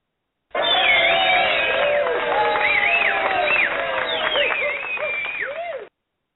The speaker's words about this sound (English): That always makes you feel special when you get a round of applause.